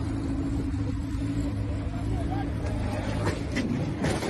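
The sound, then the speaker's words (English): Loud, continuous engine roar of the Batmobile chasing the Penguin down a highway, a heavy low rumble throughout with a few sharper bursts near the end and muffled voices underneath. “That's the Batmobile chasing fucking Penguin down the highway.”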